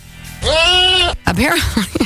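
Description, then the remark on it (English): A small goat at a goat yoga class on a farm in Manchester, Connecticut, lets out one loud, high, quavering bleat lasting under a second, then a person starts talking right after it. “Students would assume poses like the downward dog, while small goats would crawl around them and often on top of them, the participants, that is.”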